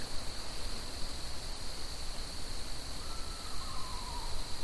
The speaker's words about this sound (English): It's a bird. Is it a bird? That's an owl, I think. Almost sounds like a horse.